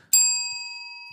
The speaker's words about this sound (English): Let's get that anti-racist bell.